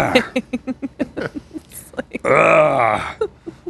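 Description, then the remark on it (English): Loud, rapid gulping of a clear beer in a steady rhythm of swallows, then a long, rumbling burp that drags on for nearly a second before a few more gulps. “Drinking a clear beer loud as hell.”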